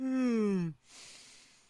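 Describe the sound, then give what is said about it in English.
A single yawn: a loud, drawn-out voiced groan sliding downward in pitch, then trailing off into a soft, breathy exhale, with no talking around it. “As Myrthal face palms and you say that, Valak, you just hear a yawn.”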